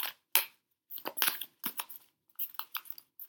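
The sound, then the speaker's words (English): A deck of oracle cards being shuffled: a quick series of crisp, papery riffles and slaps in short irregular bursts, with no one speaking. “Do one more shuffle.”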